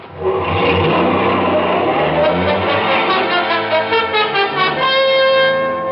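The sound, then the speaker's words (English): A car engine revs hard and accelerates, loud, its whining pitch climbing and shifting through gears for several seconds with no voices, as the car takes off behind a line of parked cars and out of a parking lot. “His friend took off, staying behind a line of parked cars until he was clear of the parking lot and far enough away so I couldn't get in a good shot.”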